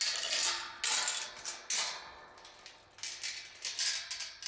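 A metal chain rattles and clinks against a barn gate in several bright, jangling bursts, with short pauses between them and no voices, as the barn is opened at breakfast time for the goats and donkeys.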